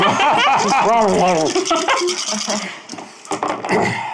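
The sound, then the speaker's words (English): Dice rattle and clatter in short bursts of sharp clicks, loudest toward the end, with people talking over the first part. “I will put them, roll them in the dice.”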